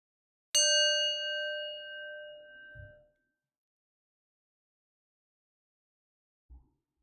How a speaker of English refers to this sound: We'll start with a bell together.